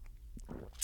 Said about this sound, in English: All right, Daddy, let's get a sip of water for this.